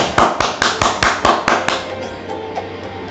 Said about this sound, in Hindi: इनके लिए जोरदार तालियां।